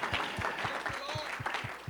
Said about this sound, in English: Let's give the man of God and God a hand clap of thanksgiving here this morning.